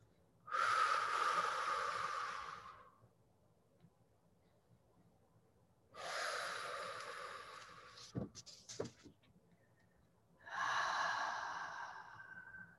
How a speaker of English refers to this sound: A few more exhales into the fire, with the fire.